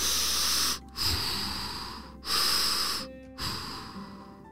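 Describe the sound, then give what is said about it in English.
A voice imitates an elephant breathing through its trunk: four loud, airy, hissing breaths, drawn in and pushed out with brief pauses between them and no talking. “Nora was breathing through her trunk, and that gave Connor an idea.”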